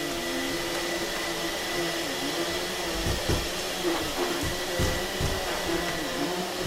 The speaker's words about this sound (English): You can finish vacuuming later.